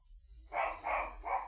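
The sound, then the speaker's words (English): A dog named Norman, after Norman Bates, barks three times in quick succession, the short bursts moderately loud over a quiet low background hum, with no talking. “If you didn't know, our dog is named after Norman Bates.”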